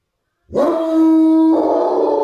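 Tracking hounds let out a loud, sustained baying howl, a long drawn-out cry that shifts pitch partway through, with no one talking; the dogs are following Hannay's scent.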